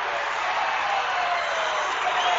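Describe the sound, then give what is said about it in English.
A basketball crowd at a Kearney High game against North Star roars and cheers after a steal and dunk gives Kearney a 50-48 lead, a dense, steady wash of many voices that holds at an even, loud level throughout with no individual talk standing out. “Seth Stroh anticipated the pass, made the steal, and that brings the crowd to their feet.”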